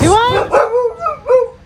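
Several sharp dog barks and yips in quick succession outside in Hawaii, loud, with a slightly whiny, high-pitched quality and a bit of outdoor background noise.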